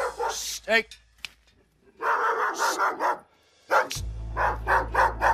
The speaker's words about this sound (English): No, that's the real dog right there. That's the real dog. If you study his bark, it's a very frantic bark. Normal dogs don't bark this frantic. They don't need. A dog that is very secure of himself don't need to overdo it.